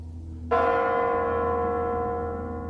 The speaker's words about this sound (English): As the bells in the Kremlin announce the new millennium in an even newer Russia.